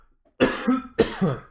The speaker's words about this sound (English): There have to be podcasts out there, other podcasts who listen to us and say, why the fuck's this guy always coughing on air? Like how unprofessional, you know what I mean?